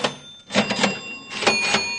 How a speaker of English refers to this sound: Those sound like cash registers ringing to me. That's just what they are.